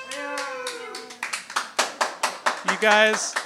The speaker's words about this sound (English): You guys look like you feel like you had to clap for that.